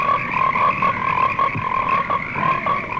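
A dense chorus of many frogs croaking at once, a steady, loud, overlapping trill with rapid pulsing calls that never let up. No voices are heard.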